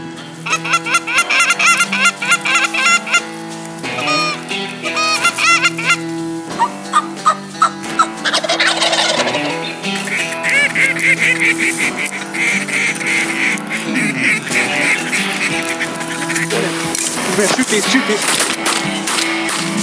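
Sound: snow geese honking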